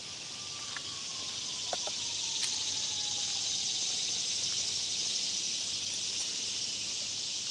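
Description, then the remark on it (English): Dense, steady cicada buzzing fills the air without pause, a bright continuous drone with a few faint chirps and clicks scattered through it, and no voices. The cicadas are among trees under a leafy canopy, just after a storm has passed. “Cicadas are kicking up today.”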